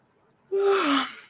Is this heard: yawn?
yes